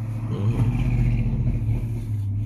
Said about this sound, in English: Oh my God, this truck sounds like it's going to break down.